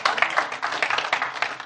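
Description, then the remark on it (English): A large audience at the Rock Church claps together for Jesus, a dense, steady wash of many hands applauding at once, fairly loud, with no single voice standing out. “Come on, give Jesus a big clap today.”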